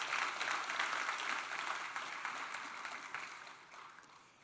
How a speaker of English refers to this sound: Come on, give the Lord a good clap for that.